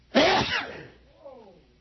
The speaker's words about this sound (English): I'm going to sneeze. Look at the light, look at the light, look at the light.